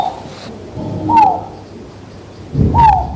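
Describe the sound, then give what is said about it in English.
A collared scops owl, one of a pair living in Jiji Township, Nantou County, gives two soft, clear hoots, each a short rising-then-falling whoop, spaced well apart over a faint low rumble of background noise. “They are a pair of colored Scops owls.”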